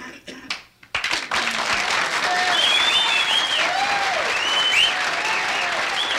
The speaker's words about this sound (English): Everybody wants a big hand. Yes, but there's also the medium hand, which most shows deserve.